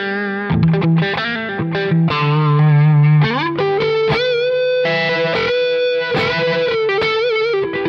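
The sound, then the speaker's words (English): Heavily distorted, high-gain electric guitar through a push-pull EL34 tube amp with the gain at 100%, playing loud low chugs that move into sustained, bending lead notes with thick, buzzing harmonics and no talking. “Gain on 100%, all the way up.”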